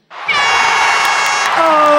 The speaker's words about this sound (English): Oh, audience, why'd you get an air horn? Calm down. you guys are too much this week. Too much.